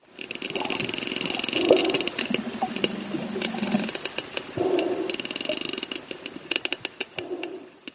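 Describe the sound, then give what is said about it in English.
Voices imitate sperm whale echolocation, making trains of sharp, rapid mouth clicks mixed with low hummed vocal sounds. The clicks grow sparser and more distinct toward the end. “What we found particularly interesting in this episode was sperm whales' ability to echolocate, making noises that sound like this.”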